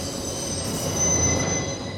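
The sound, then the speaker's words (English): A sustained, piercing metallic screech of train wheels squealing, a film sound effect from The Godfather accompanying the moment leading up to Sollozzo's death, with steady high-pitched tones ringing over a dense low rumble that swells slightly midway through. “In The Godfather, the moment leading up to Sollozzo's death, is accompanied by this screechy, John Cagey sound.”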